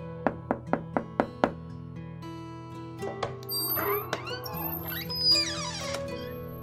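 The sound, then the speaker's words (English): Six quick, evenly spaced knocks on a door ring out crisp, then give way to softer shuffling and a few squeaky, creaking sounds. “Her father always greeted William with a big smile, so when he knocked at the door, it was a welcome sight.”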